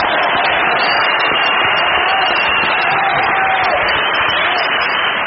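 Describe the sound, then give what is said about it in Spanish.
A large crowd in Formosa roars and cheers on hearing the name Formosa, a loud, unbroken wash of voices that holds steady for several seconds with no individual words standing out. “Y al oír Formosa es cuando las muchedumbres estallan en un grito de júbilo.”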